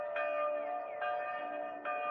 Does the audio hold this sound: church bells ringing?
yes